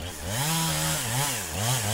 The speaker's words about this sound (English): Well, finally, you get the saw running.